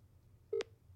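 A single brief electronic phone tone, like the start of an outgoing ringing tone as a call is placed to someone, sounds clearly over a low background hum, ending in a short click. No one speaks.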